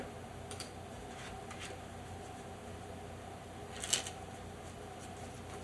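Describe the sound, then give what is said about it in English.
Soft, papery riffles of playing cards being shuffled, a few brief bursts with a slightly louder flutter near the end, fairly quiet over a steady low background hum. No one speaks. “Sorry, I'm shuffling cards.”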